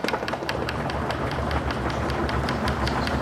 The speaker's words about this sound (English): What's all this banging on the desks about? That's how you thank someone for a lecture in Germany. Very strange custom, if you ask me.